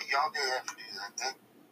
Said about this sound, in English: Dude, that was odd. Like, my phone just started talking, like somebody was talking on it. There was nothing up on it.